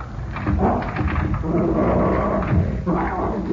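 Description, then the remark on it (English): A dog, Mr. Fred Harlan's dog, growls low and steadily for a few seconds, a rough, rumbling snarl that swells and rolls continuously without breaks. “Seems to be no one here but the dog.”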